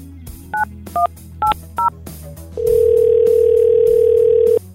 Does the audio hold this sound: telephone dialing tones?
yes